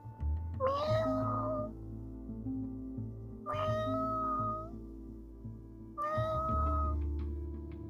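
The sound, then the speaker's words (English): A domestic tabby cat meows three times, evenly spaced about three seconds apart, each call drawn out and rising then falling, clear over a low background hum, as she wants to go out. “She meows when she wants to go out.”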